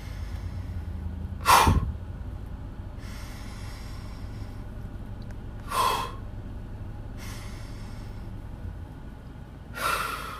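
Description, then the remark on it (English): Slow, drawn-out inhales of about three seconds alternate with sharp, forceful exhales of about one second in a steady repeating breathing rhythm, with no talking; each quick breath out is noticeably louder than the softer intake before it. “Inhale each time for 3 seconds and exhale at once each time in 1 second.”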